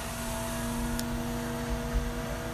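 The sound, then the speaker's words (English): A steady, low mechanical rumble of a garbage truck collecting the trash outside runs throughout, with a humming engine drone and a brief sharp click about a second in. No one speaks. “Yeah, it's the trash.”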